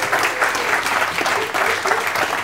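A room full of people clapping steadily, a dense, continuous wash of applause that stays loud and even throughout with no voices breaking through.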